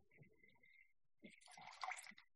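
Coffee liqueur is poured into a glass for a cocktail: a thin rising tone as it fills, then a brief, louder gurgling splash near the end. The pour is moderately quiet.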